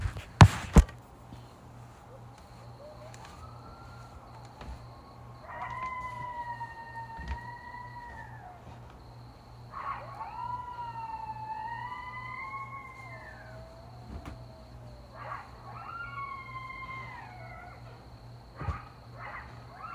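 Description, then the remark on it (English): Several coyotes howl together on May 3rd, wavering high-pitched cries rising and falling in overlapping bursts over a steady low hum, with a few sharp knocks at the start and end. “Y'all, listen at these coyotes.”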